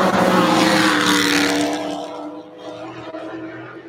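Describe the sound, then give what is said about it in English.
Race cars roar loudly past on a track, a gray car running ahead of a green car, engines whining at high revs before the sound eases slightly and recedes a little, with a faint hint of tire squeal. “And that's our gray car in front of our green car.”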